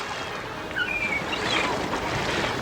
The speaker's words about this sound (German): Dann machten die TKKG-Freunde ihr Segelboot klar und verfolgten die Poseidon, die natürlich sehr viel schneller war.